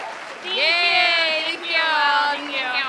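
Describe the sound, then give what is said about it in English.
A voice mimics crowd applause and cheering with two sustained, wavering vocal swells, fairly loud, lasting about three seconds. “Insert applause.”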